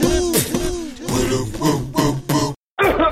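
A loud series of raspy, voiced throat-clearing sounds comes in several quick bursts, then breaks off in a short silence before one more harsh rasp.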